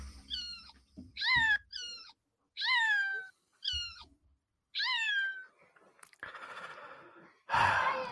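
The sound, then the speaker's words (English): A cat that has hidden from a small child trying to get it meows about six times in quick, plaintive calls that slide downward in pitch, fairly loud, followed by two breathy, hissing exhalations. No one speaks. “The small child trying to obtain a cat who's decided to hide.”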